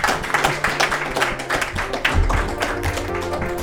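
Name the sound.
round of applause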